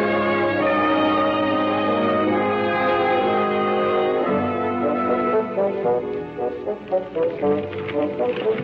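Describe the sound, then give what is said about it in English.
Rusty wheels of a high cart pulled along by Uncle Henry in Centerville, Texas squeak in a steady, shrill, grinding whine, with a rhythmic clopping pulse growing more prominent toward the end. No voices are heard. “Everybody in Centerville, when he heard the squeak of those rusty wheels, knew that Uncle Henry was coming.”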